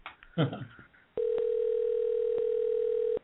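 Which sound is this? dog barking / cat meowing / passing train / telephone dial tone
telephone dial tone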